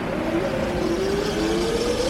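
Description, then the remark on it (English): A car engine revs steadily louder as the vehicle draws near, its rising whine climbing over a constant rumble of road noise, with no one speaking. “It's not like a car's just going to come along and pick us up.”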